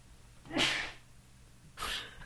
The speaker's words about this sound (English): got another sneeze coming.